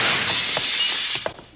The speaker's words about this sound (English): Doggone it. There goes our front window again. I've put new glass in there 5 times.